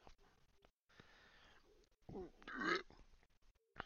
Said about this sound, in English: Even the burps are girly. That sounded like on my end it was like a demon burp.